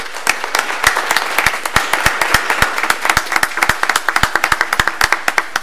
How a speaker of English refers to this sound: The Girl Scouts just to stand up for us so that we can give them a round of applause for their hard work.